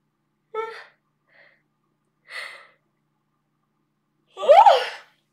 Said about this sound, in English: If you're yawning with me, like the energy is moving in. If you're not yawning, it's okay. Don't worry, it's still happening. Everyone expresses differently.